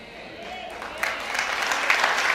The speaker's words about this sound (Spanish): Ese fue aplauso. ¿Se acuerdan el aplauso de qué? De golf, ¿verdad? O de ópera. Así bien, pasito.